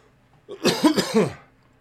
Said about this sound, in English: Sorry, bro. I have a little bit of a cough.